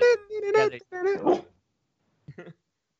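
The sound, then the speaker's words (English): A dog gives a string of high, whiny yelps and whimpers for over a second, then falls quiet before one short, sharp bark near the end. “My dog agrees. You hear him?”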